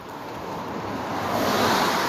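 A rushing, watery whoosh builds steadily and peaks near the end as a car drives through a dip in the street and sends up spray; broad noisy splash with no voices.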